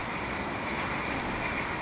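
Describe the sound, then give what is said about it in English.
A big ship's rumble: a steady, continuous mechanical drone with a dense low roar and a hissing upper layer, holding even and loud throughout with no voices. “For now, the sound of big ships rumbling through the area is relatively rare.”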